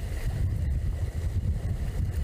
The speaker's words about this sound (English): Next to the sounds of the Lowcountry's calming waves